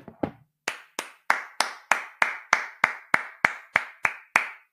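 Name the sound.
round of applause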